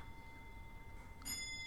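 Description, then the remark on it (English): A longcase grandfather clock in a house chiming five o'clock; a chime rings out once near the end, a faint, bright metallic strike with a lingering ring, preceded by a quiet steady hum and no voices. “That's just the long case clock. I'll wait till it finishes chiming.”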